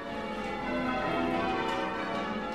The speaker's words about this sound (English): Nearly all church bells are made out of a bronze, and that's what gives them their distinctive tone and sound.